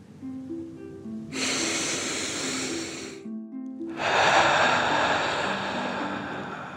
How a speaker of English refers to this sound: Breathing in through your nose and breathing fire out your mouth. Again, deep breath in and out. Last one, fill up your belly.